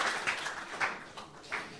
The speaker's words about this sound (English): Let's give the Lord a clap offering this morning.